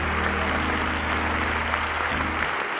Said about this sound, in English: That's right, give the Lord a hand clap of praise before you're seated today.